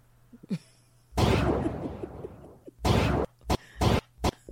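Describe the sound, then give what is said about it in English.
A voice imitates gunshots with harsh, breathy bursts of noise: one long, loud blast that trails off, followed by several shorter sharp puffs in an uneven rhythm. “That's not a good gunshot, a sound effect, but whatever.”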